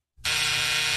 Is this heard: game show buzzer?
yes